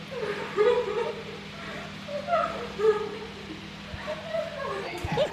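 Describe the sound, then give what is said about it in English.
Two people sitting on the floor put on exaggerated fake crying, with wavering, whimpering wails and sobs that overlap and rise and fall for several seconds, moderately loud. “they're both going to be giving their best Oscar-worthy crying.”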